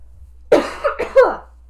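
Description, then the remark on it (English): A loud cough in a few rough bursts over about a second, harsh and breathy with a throaty rasp, heard alone against a quiet background. “I have to cough.”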